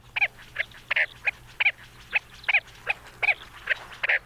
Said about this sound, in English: Thanks to Zeno Kanto, we've got the calls of a desert game bird. University of Hawaii at Hilo Professor Patrick Hart introduces us to the chestnut-bellied sand grouse.